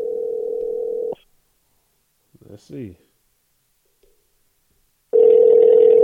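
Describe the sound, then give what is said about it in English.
A telephone ringback tone sounds twice, each a steady buzzing burst about a second long, separated by a long pause, as a man who hung up is called again. A short murmur of voice falls in the gap. “Call him again.”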